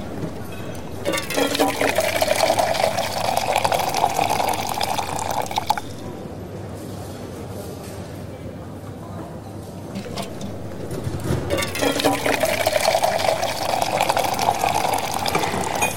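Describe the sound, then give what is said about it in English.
Coffee is poured from a coffee pot into cups in two separate streams, each a steady, bright gurgling fill lasting several seconds, with a quieter pause between them. No talking. “Just so happens, I have the coffee pot here. Yep, hang on, I'll pour it for you.”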